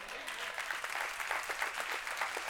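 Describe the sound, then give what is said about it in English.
A crowd claps steadily, with a dense wash of many hands making sharp, overlapping claps at an even, sustained loudness and no letup. “Listen, okay, I appreciate all of the applause, but I'm going to remind you, you clapped when you sent me that email.”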